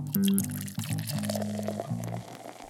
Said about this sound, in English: So let's open a bottle and get on with the show.